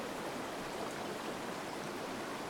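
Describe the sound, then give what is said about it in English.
Steady, even rush of flowing water, like a stream running continuously at moderate volume, with a dense hiss across the whole range and no voices or breaks. “I was just checking the water here.”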